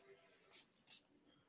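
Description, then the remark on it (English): Two quick spritzes of sage spray from a pump spray bottle, each a brief, bright airy hiss, separated by a short pause against a quiet background. “This is sage spray, actually.”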